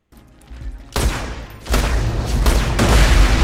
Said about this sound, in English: Okay, it is my favorite gun in Borderlands 2, the Sunny Blockhead. Okay. It was the shotgun that you could only get from the secret Minecraft area in Borderlands 2.